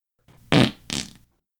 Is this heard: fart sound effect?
yes